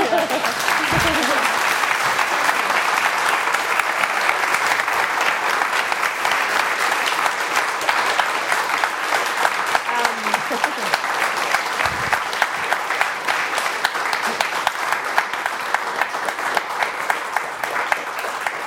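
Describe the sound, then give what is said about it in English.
Sustained applause from an audience, a dense, steady wash of many hands clapping that holds at an even loudness for the full length, with a few faint voices mixed in. “They preempted my clap, so you're just going to have to do that again.”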